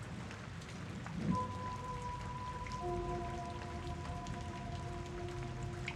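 Steady rain hisses and patters evenly throughout, with a faint low drone of sustained tones rising in beneath it after the first second. No one speaks.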